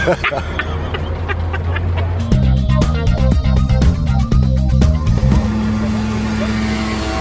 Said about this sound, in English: Scooters overtake us as we ride the Petit Train towards the entrance today.